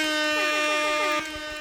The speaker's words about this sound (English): Let me get some motherfucking air horns real quick.